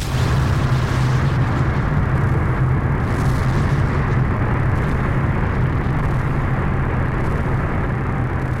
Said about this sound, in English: The test, codenamed Trinity, caused an explosion equivalent to 44 million pounds of TNT. The Trinity test was a scientific triumph.